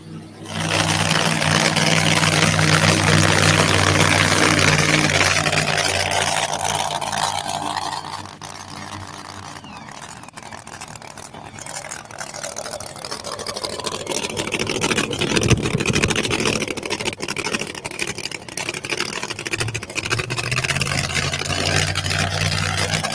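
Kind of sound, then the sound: vehicle, truck engine running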